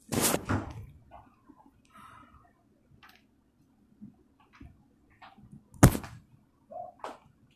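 A door is opened to let air into a hot room: a loud clattering thud at the start, scattered faint clicks and rustles, then another sharp bang and a softer knock near the end.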